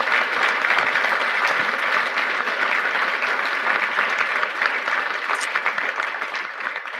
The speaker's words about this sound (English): Speaking of that, would you please give a round of applause to all of the ladies who took care of the kids and did our meals?